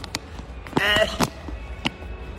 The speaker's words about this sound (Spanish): Voy a cerrar la puerta para que no se oiga.